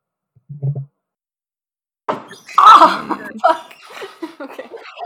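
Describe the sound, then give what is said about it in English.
A single dull, low thud of a person hitting their funny bone hard against something, followed after a pause by a sharp burst of noise and a stretch of strained, pained vocal sounds. “It sounded like you just got hit by someone. I'm sorry. I like hit my funny bone.”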